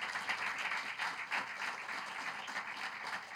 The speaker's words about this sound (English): Thank you very much. Please clap for her.